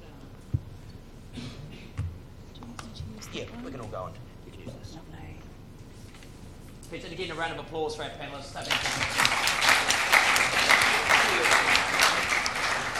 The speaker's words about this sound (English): Again, a round of applause for our panellists.